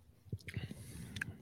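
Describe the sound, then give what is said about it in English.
Quiet wet slurping of a caffeinated drink from a cup, a few short sips and mouth noises in quick succession, ending with a brief airy suck. No one speaks. “I need my caffeine and my medicine to kick in. Slurp it up, boy.”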